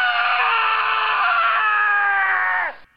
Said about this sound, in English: The original scream